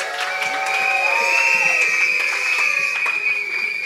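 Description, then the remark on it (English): Shrill party horns and whistles blare together in a sustained, high-pitched chorus, some notes sliding up and down, over a loud, steady backdrop of cheering and clapping from a crowd. “Everyone, blow your whistles, blow your party horns.”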